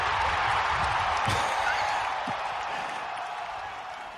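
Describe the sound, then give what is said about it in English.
A crowd-applause sound effect drop played on a show: a dense, steady wash of clapping that holds for about four seconds and tapers off slightly toward the end, with no talking over it. “as part play of the easy play the crowd thing again.”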